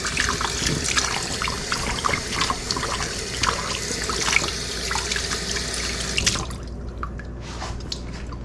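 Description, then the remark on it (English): Water pours steadily into a container with a dense, splashy rush and scattered drips, then cuts off abruptly near the end, leaving a few faint trickles. No one speaks. “This is getting filled up. Let me, dump this a little bit here. Get it filled up here.”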